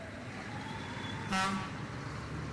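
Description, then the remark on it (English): Steady street traffic rumbles in the background, muffled as heard through an open window, with a single short car horn toot cutting in briefly partway through. “Sorry if you can hear the cars or whatever. All this talk of wind, I had to open a window.”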